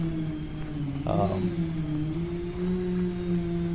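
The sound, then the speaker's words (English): A chainsaw, run by workers clearing trees near C. Hatton School, hums in a steady, low, tonal drone, briefly revving higher about a second in before settling back to an even buzz. No one speaks. “I'm trying to figure out where the chainsaw is coming from.”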